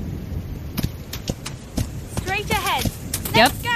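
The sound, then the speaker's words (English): Horse hooves clip-clop in a steady, even rhythm, roughly two beats per second, clear, as a horse is ridden through dark woods, with brief wavering vocal sounds rising over the hoofbeats partway through. “Oh, we have a horse now, apparently.”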